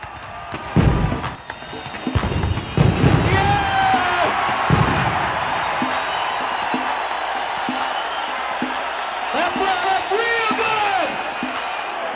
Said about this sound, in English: And what we'll do is we'll count to three, and then we'll all go boom. One, two, three, boom! Here they go!